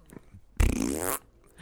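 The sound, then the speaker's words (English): A voice blows a single loud, wet raspberry imitating a juicy cartoon fart, a buzzy sputtering burst lasting about half a second, close up and on its own. “It was just like the classic juicy cartoon fart.”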